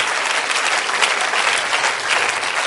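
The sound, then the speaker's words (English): An audience at a worship service claps hands to the Lord in a dense, steady wash of applause, many overlapping claps blending into a loud, even roar that holds for a few seconds with no voices standing out. “Why don't you clap your hands to the Lord today?”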